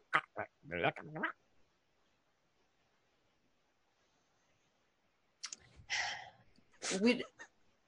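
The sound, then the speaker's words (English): A voice imitates a red creature chirping in a strange language, with odd, clicking chirps and squawks, in two short bursts separated by several seconds of silence. “One of the big red one, the red one is a bit larger than the four green ones, and it kind of prods one of them and it chirps to it in this strange language.”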